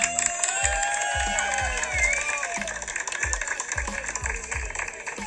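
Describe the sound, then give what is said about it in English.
A crowd applauds and cheers loudly, with dense clapping, high whoops and shouts, over a steady thumping beat of music underneath. “And at this time, I would like to give them one more round of applause.”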